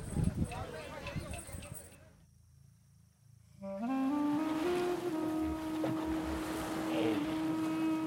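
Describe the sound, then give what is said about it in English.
A boat moving through water, with splashing and rushing water at first, a brief hush, then a steady low drone that holds over continuous water noise. “All was done as he wished, and we sailed up the Nile until we came to Koptos”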